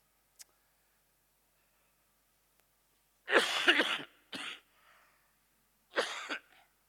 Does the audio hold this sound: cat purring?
no